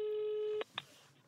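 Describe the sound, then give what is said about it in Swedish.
A steady electronic telephone ringing tone on an outgoing call to a library in Danderyd holds for about half a second, then cuts off with a click and a short clatter as the line is picked up, leaving quiet background noise. “Vi ringer på bibliotek och viskar något.”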